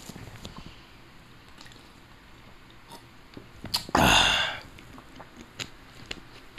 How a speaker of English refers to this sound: You know, when I said Marco Rubio, you know, the famous gulp, you know what I'm saying?